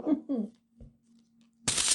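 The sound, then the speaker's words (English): A brief voice murmurs, then after a pause a sharp, loud rasp of paper peeling away from sticky glue bursts out, lasting about a third of a second. “That was just the glue.”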